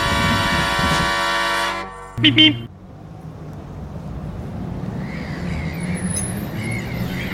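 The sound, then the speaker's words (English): A loud, sustained horn blast with a rich, buzzing harmonic tone lasts about two seconds, followed by a brief clunk and then a steady, low rumbling bustle of ambience at a ferry terminal for a foot-passenger ferry crossing to the Channel Island of Sark. “I'm at the ferry terminal, about to cross over to the Channel Island of Sark.”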